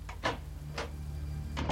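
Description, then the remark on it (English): A woman closes the wooden palm log door of a mud brick house behind her, with a few short scraping knocks over a low steady hum and a last thud at the end. No voices. “She ducked through the courtyard and into the main room of her mud brick house, closing the palm log door behind her.”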